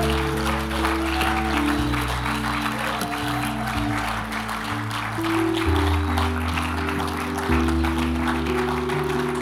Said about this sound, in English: Why don't we give a round of applause for these precious ones?